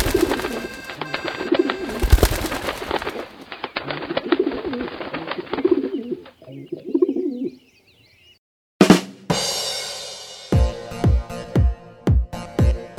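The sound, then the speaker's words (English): A group of pigeons coos in a steady, overlapping murmur. After a brief silence, a few louder, rhythmic coos follow, each with a throaty downward dip. “You can never, ever, ever park it near a flock of pigeons.”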